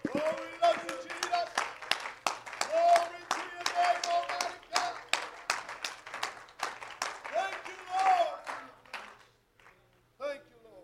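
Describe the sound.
An audience's hand clap of praise before being seated: dense, steady hand clapping for about nine seconds with voices calling out over it, then fading to near silence apart from one last short burst.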